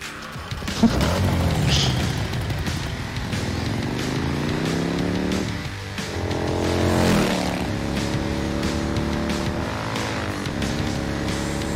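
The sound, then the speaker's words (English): An Arch Motorcycle engine, from a custom production motorcycle company, revs up and down repeatedly, its loud growl rising and falling in pitch with several sharp throttle bursts and no talking, recorded as audio for Cyberpunk 2077. “And we're here as representatives of Arch Motorcycle, and we're doing some audio recording for Cyberpunk 2077.”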